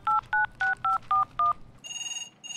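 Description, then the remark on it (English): Six quick, evenly spaced touch-tone beeps as a number is dialed on a shell phone, followed by a steady electronic ringing tone on the line. Clear, with no one speaking. “Oh, it's ringing.”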